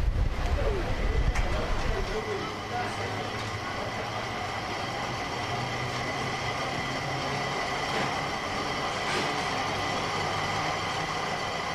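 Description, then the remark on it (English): Steady mechanical rumble and whine of cables hauling a scenic railway train up a cliff to the depot at the top, with humming tones. It is loudest at first, then settles into a constant drone, with faint voices in the background. “The sound you were just hearing was the cables bringing up the scenic railway to the depot at the top of the cliff, and we're actually sitting in the train now.”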